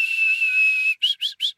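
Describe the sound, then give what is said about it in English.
Sweet, lilting birdsong: one long, steady, high whistled note, then four quick rising chirps in an even rhythm, clear and with no other sound. “Just this very sweet, lilting song, this.”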